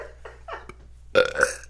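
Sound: burping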